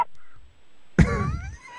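A single harsh, throaty cough bursts out loud after a short quiet pause, with a raspy, honk-like voiced tail that fades over about half a second.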